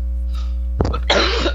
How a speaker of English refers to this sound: I'm sorry, you guys, about the coughing.